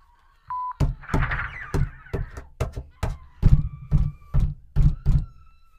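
A video game door opening: a brief electronic beep, then a string of about ten heavy mechanical clunks and thuds, loud, with no voices.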